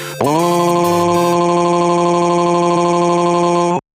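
A loud, harsh electronic robot phone ringtone blares as one sustained buzzing tone, steady and grating for nearly four seconds before cutting off abruptly.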